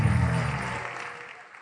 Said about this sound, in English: Give the Lord a clap, offering and some praise.